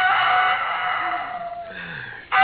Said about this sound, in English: Oh, I could have slept if it hadn't been for that darn rooster.